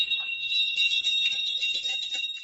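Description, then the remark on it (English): A dense, continuous jingling of many small bells fastened to the necks of a passing pack train of small shaggy ponies carrying supplies for monasteries, bright and high-pitched, shimmering steadily with slight rises and falls and no voices. “The bells are fastened to the ponies' necks.”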